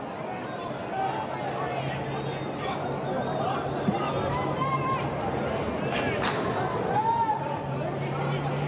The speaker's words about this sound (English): Crowd's gone a bit hushed here.